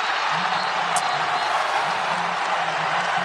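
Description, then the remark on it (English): A large basketball crowd at an Indiana University game against Iowa applauds and roars steadily after Devonte Green's third straight three-pointer in his senior year, a dense wash of clapping and cheering at a constant loud level, with faint low murmurs of voices underneath. “And by the way, that is actual applause from the Iowa game your senior year after your third straight three, I think.”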